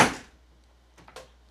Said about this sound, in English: I'm tromping through the kitchen. I'm going out, and now I'm going to open the door to the outside and...